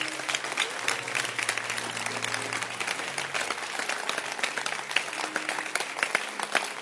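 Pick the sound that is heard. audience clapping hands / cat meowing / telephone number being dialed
audience clapping hands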